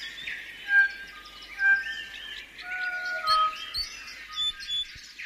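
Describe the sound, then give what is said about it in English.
A lively chorus of birdsong, with many overlapping whistles, trills and chirps from several birds at once, continuous throughout with no voices. “I think Predator-Free 2050 is very much about bringing back the life, bringing back the birds.”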